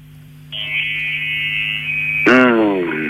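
An electric shaver starts up and buzzes steadily as it shaves chest hair, with a phone placed by the shaver, a constant whirring drone over a low hum, with a voice breaking in briefly near the end.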